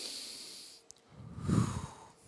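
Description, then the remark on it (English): A slow, deep breath drawn in with a soft airy hiss, followed by a fuller, louder exhale rushing out, taken as a rhythmic breathing exercise, with no talking. “To catch your breath, you must realize breathing is a rhythm. In fact, let's just try it.”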